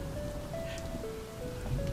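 Steady rain falls in a continuous, even hiss, with faint sustained musical tones drifting above it and no one speaking.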